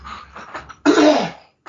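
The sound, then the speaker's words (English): A person coughs into the microphone: a few small throaty rasps build into one loud, harsh cough, followed by a brief silence and a faint breath. “oh my gosh, I've got a little bit of a cough. Excuse me for a second.”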